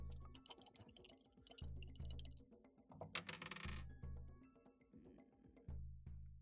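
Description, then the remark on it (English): Dice clatter and rattle across a hard tabletop in a couple of quick bursts of sharp clicks, with a steady low hum running underneath; one die rolls into a separate pool of dice. “Well, one of them turned out well, and then the other one I rolled into the other pool of dice that I wasn't rolling, and I forgot which one was the one I was rolling.”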